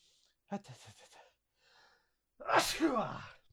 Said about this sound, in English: I need to sneeze. Hold on.